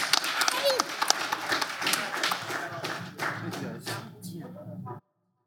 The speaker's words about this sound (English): Healthy applause. Healthy applause for our panelists. Thank you.